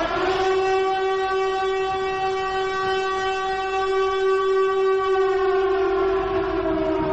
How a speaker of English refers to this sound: Sound the alarm. Somebody out there, sound the alarm. It's time for giveaways, okay? Where's the alarm? Where's the alarm? Here it is. Oh. Oh, yeah. It's alarm time, baby.